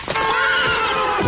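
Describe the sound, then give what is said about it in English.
A horse gives a loud whinny that rises and quavers for just over a second, with no voices alongside. “A horse and its rider have less protection than other road users.”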